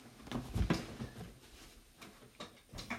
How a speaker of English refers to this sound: It happened again. My chair went down again. Okay. That's annoying. I don't know why I keep doing that. Oh well. Usually if I push it up, it stays up for a little while.